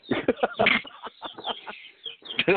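Young chickens cluck and peep in the room in a busy stream of short, overlapping calls, with a brief lull before the chatter picks up again.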